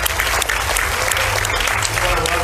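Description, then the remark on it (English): A crowd at Central Church applauds steadily to welcome people joining on the live stream, dense overlapping claps forming a loud, even wash of sound with no talking over it. “And I would love for you guys to join me in welcoming them by a round of applause as well.”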